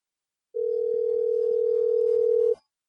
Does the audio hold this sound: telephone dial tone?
yes